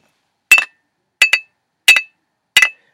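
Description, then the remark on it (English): A man in a 1970s movie clinks glass bottles together four times at a steady, unhurried pace, each strike a quick double tap with a bright ringing tone. The clinks are clear, with silence between them and no voices. “it goes back to a movie that came out in the 70s, and the guy was clinking the bottles together. And it sounded like this.”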